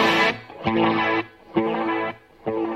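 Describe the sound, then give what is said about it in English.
Electric guitar chords drenched in chorus and delay ring out in a few loud bursts separated by brief dips, with no voices present. “I like some cool choruses, cool delays.”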